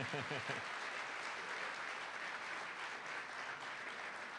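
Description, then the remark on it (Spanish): An audience bursts into another round of steady, dense applause that stays loud and even for several seconds. A voice is briefly audible just as the clapping begins. “vamos con un nuevo aplauso, está bien.”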